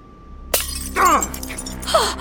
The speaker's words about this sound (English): Your hand! You broke your glass!